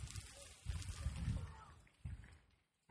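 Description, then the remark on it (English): Scallops searing in a pan over coals at maximum heat, about 700-800 degrees underneath, as the stock cooks off and the socarrat forms, give off a soft, steady sizzle broken by scattered sharp pops and crackles, coming in uneven bursts at a fairly low level with no one talking. “I hear the popping now. Can you get that popping in there? I'm trying. It's crackling.”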